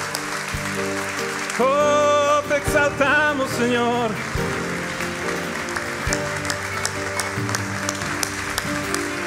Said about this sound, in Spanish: Ponte en pie en esta mañana y no dejes de aplaudirlo, no dejes de aplaudirlo, no dejes de aplaudirlo.